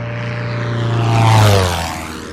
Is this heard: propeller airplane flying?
yes